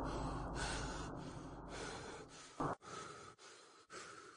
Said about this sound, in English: He was panting and out of breath.